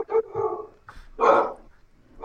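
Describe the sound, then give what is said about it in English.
A dog barks several times in quick, uneven, loud bursts, with one longer, stronger bark near the middle and some whiny, yelping tones between. “my dog's giving a shout out to Jesse too”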